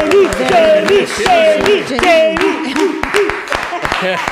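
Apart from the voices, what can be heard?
round of applause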